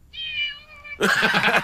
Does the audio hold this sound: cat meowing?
yes